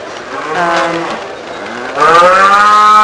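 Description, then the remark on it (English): Cattle, including Holsteins, Herefords and South Devons, moo in long, drawn-out calls in the cattle tent of a show in the UK. One low moo fills the first half, then a second, louder moo takes over, with no one talking. “So I'm here in the cattle tent,”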